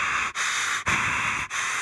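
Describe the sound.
A voice imitates Darth Vader's breathing inside a tight trick-or-treating mask: heavy, hissing, loud airy breaths separated by brief pauses, like a respirator wheezing in and out.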